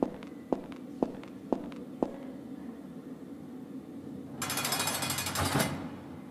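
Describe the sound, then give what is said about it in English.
Five even footsteps walking over to a desk land about half a second apart, each a crisp knock, followed by a loud, hissing scrape or rustle that lasts just over a second. No voices. “Now walk over to his desk and find the hollow floorboard.”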